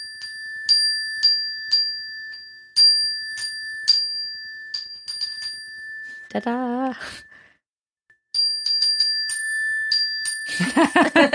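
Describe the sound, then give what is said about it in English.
A small bell is struck again and again in quick, ringing bursts. A voice briefly calls out mid-way, then the bright chiming picks up again before a burst of rustling noise at the end. “So I will play this bell with the caveat that those who aren't musicians build platforms for those who can build musicians, for musicians.”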